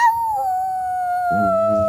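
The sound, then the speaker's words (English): A child's voice imitates a wolf howl, a single long, high 'oooo' that slowly sinks in pitch and turns rougher near the end. “I know what the wolf said.”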